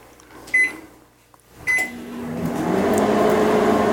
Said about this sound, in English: And then we microwave it. We're going to try 60 seconds first.